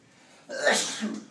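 A single sharp sneeze bursts out after a brief quiet moment, a loud breathy blast that trails off quickly.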